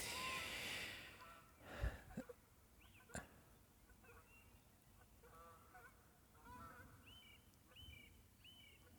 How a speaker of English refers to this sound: I'm sure you can hear the birds. I'm not a bird expert. What's it called? Ornithologist? Is that the name? I'm not a bird expert. So I don't necessarily know what those birds are, but maybe you can tell me in the comments.